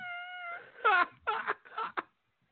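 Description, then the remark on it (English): Tom Robinson's 18-year-old cat, which has taken over his house in Clifton Heights, lets out a drawn-out, whining cry, then three or four short, strained meows in quick succession, heard alone at moderate volume before falling silent. “Like, did you know that his cat has taken over his house in Clifton Heights?”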